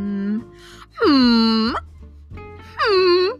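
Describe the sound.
A voice imitates whale song into a microphone: two loud, drawn-out moaning wails, each dipping in pitch and then curling upward, separated by a short pause, with softer vocal noises before them.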